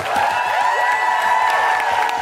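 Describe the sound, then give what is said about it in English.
A crowd applauds and cheers loudly and steadily, with whoops and shouts rising above dense clapping throughout. “Could you give a big, big round of applause for the wonderful Coco Brown?”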